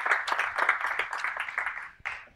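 A short burst of applause for a speaker being introduced at a Saturday morning event, many hands clapping in a dense, steady patter that briefly drops out near the end before picking back up. No one speaks.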